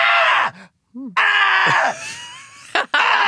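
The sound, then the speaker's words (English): A voice imitates the cartoon villain Ganon screaming as he is being defeated: three loud, strained screams separated by short, gasping breaths and groans, intense with no talking. “He screams like three times and takes breaths like,”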